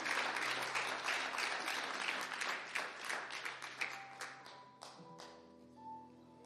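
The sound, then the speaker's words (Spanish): At a Spanish-language church service, the standing audience applauds together for the Lord. The dense crowd of clapping rings out steadily, then thins to scattered claps as a sustained organ-like tone rises beneath it. “Póngase de pie, por favor. Fuerte aplauso a Él.”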